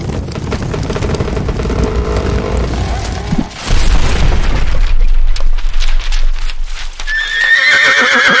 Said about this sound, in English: They jumped off, and I jumped to the side, and the horses ran like crazy. They raced to the bottom of the hill, just like I knew they would. And the wagon turned over.